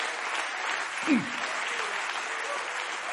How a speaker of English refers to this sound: Come on and clap your hands to the Lord and give him praise.